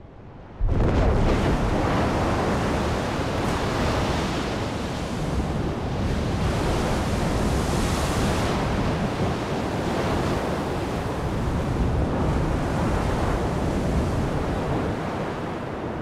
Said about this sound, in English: When the erupting magma comes into direct contact with a body of water, the very large contrast in temperature causes both the water and the magma to explode.